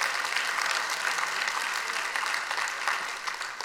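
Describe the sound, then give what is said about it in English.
An audience claps together in a dense, steady wash of applause, many overlapping hand claps sustained at an even level for several seconds with no voices rising above it. “Go ahead, clap.”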